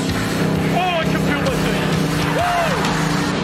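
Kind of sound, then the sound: vehicle, race car engine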